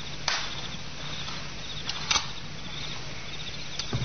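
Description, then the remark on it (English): A garden gate clicks shut softly at night, then a few faint, scattered footsteps of a man and a woman fade out over a steady low hum and a thin, insect-like night background. No one speaks. “A garden gate shut softly, and footsteps, a man and a woman, fade away into the sounds of the night.”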